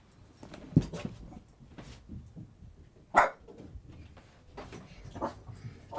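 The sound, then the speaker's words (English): A dog locked outside a house barks in a handful of sharp, irregular bursts, two louder than the rest, sounding somewhat muffled, with no one talking. “I locked my dog outside to avoid that.”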